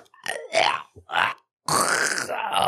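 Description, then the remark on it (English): A voice imitates choking: two short, strained grunting gasps, a brief pause, then a long raspy, throaty rasp that runs to the end, fairly loud, with no words. “And then getting a little bit weirder, they heard sounds of lip smacking and gasping as if someone's being choked.”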